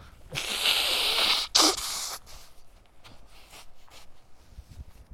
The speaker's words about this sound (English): Sorry, everybody. I got to blow my nose here.